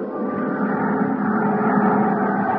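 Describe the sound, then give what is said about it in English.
A steady, droning propeller engine of a small charter plane hums continuously in flight over the Mojave desert toward the ghost town of Calico, loud, with a constant low rumble and no breaks or voices. “$50 even to Al Sterner for his charter plane to the ghost town of Calico”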